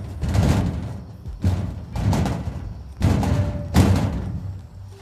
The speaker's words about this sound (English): Filing cabinet. Come on, we gotta hit shit. I just want to know if it'd make a loud... It makes a loud noise. Plus it echoes out there.